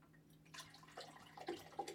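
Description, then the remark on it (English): Water trickles and splashes into an empty glass, starting after a brief quiet moment, with small bright drips and gurgles over a soft, steady background. No one speaks. “Just freaking ASMR pour water.”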